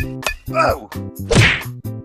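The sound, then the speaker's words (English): A loud, sharp thwack of a baseball bat striking a man in the face, preceded by a quick swishing whoosh, set against a steady tonal musical backing with no talking. “Watch as I bash him in the face with this baseball bat.”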